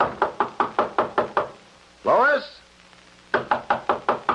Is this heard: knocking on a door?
yes